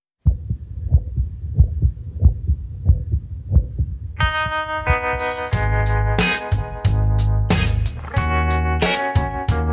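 A steady, muffled heartbeat thumps alone for about four seconds, then music swells in with bright tones and strong percussion, the pulse carrying on underneath.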